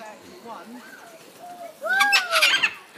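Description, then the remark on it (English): Parrots squawk, one trying to say hello, starting with a few softer warbling calls and then breaking into a loud, harsh burst of overlapping screeches before trailing off. “can you hear the parrots?”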